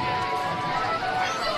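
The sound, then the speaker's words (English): A loud, dense carnival crowd roars continuously, with many overlapping voices merging into a bustling wash. A steady high tone runs underneath throughout. “And the carnival immediately begins,”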